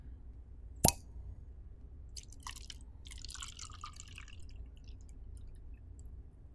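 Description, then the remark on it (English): A single sharp pop as a cork comes out of a bottle of very dark wine, followed a moment later by a few seconds of gurgling, splashing liquid as the wine is poured into a glass. No talking. “So as soon as I started pouring that out, honestly, as soon as I got the cork out, all I could smell was wine.”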